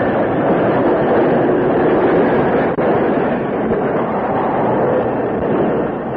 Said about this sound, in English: As the engineer closed the throttle and applied the brakes, the Lone Ranger recognized the man who signaled.